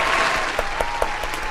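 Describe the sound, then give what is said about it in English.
A crowd applauds for a rapper's birthday in a dense, steady wash of clapping, with a few sharper claps standing out at a roughly even rhythm. It stays loud throughout, with no voices on top. “Give him a round of applause right quick.”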